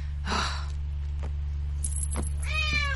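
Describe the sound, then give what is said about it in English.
A cat lets out a clear meow near the end, preceded by a breathy huff and a few soft clicks, all over a steady low electrical hum. “Now be good, kitty. I don't know how you keep getting out.”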